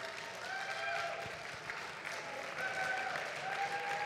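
A church audience stands to its feet and breaks into a sustained round of applause for a guest, dense crackling claps with scattered whoops, staying fairly steady and loud throughout without any speech over it.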